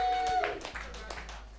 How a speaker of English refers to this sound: Guys, give it up if you know what pornography is. Just clap it up.